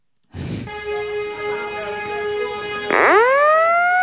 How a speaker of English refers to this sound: He smashed a fire alarm because he was so mad about it. Here's what the fire alarm sounded like.